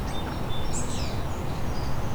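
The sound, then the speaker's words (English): A starling runs through imitations of other birds' calls, including tern and osprey: thin, high whistles and a quick sweeping chirp, fairly faint over a steady rushing background noise. “tern, osprey, all being mimicked.”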